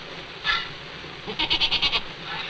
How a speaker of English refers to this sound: I think you're a beautiful goat.